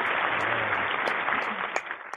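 A crowd applauds in a dense, steady wash of clapping with a few sharper claps poking through, holding a fairly even level before easing off slightly at the end.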